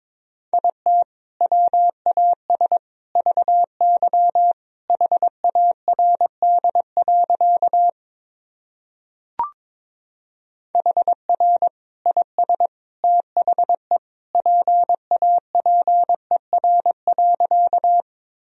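Morse code practice sentences from the Top 300 Words and Abbreviations sent at 22 wpm: a steady mid-pitched tone keyed in quick dots and dashes, two long runs split by a short pause with a single click, no voices.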